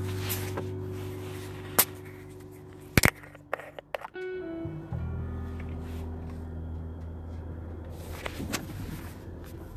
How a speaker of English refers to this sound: So let's, without further ado, let's try this Lavender Love. Going in for a crack of the seal.